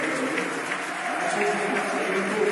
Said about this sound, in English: 84th minute approaches. Lee Gregory's coming out of the game, listeners. To the applause of the den.